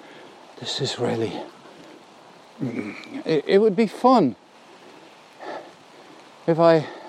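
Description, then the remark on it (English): A steady, soft hiss of rain falling through woodland of beech trees and ivy in Ireland runs continuously in the background while a person speaks in short bursts over it. “if I had all the right rain gear”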